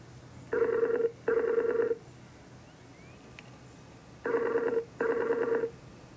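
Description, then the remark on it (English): Ringback tone of an outgoing phone call: two pairs of short, even burr-burr rings separated by a pause, steady and fairly clear over a faint low hum, with no one speaking. “Oh, it's ringing.”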